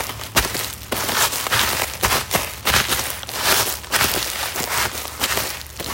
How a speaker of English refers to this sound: And this one, hopefully you can tell what this one is. We've got our crunching in the snow. It wouldn't be Christmas without snow crunching.